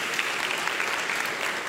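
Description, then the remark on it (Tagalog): An audience breaks into loud, sustained applause for the Lord during a church service, a dense steady wash of many hands clapping with no pauses and no voices standing out. “Sige po, isang malakas na palakpak sa ating Panginoon.”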